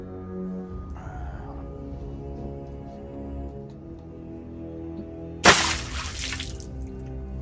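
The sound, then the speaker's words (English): Water is thrown over someone who will not wake up: a sudden splash arriving after several seconds of low background hum, with a brief spattering tail before it settles. “Have you tried throwing water over him yet?”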